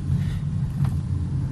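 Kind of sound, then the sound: vehicle, car interior engine rumble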